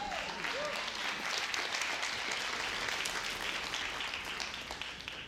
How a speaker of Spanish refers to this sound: Espero que no te pongas bravo, pero me imagino que los que aplauden son los generosos.